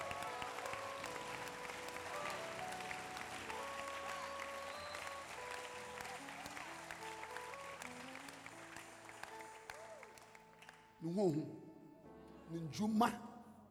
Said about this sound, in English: Are you clapping your hands for this God?